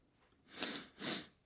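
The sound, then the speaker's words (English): Two quick, breathy sniffs, one right after the other, soft and airy with nothing else around them. “There's a wee sniff.”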